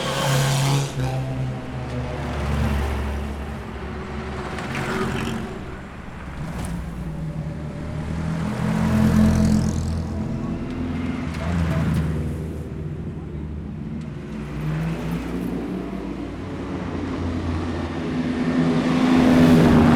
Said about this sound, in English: probably a good place to watch for most people, because the cars that don't have a silencer have a particularly throaty roar, and because Downing Street's quite narrow, it's reflected quite well and enhanced. And they're on their second circuit now.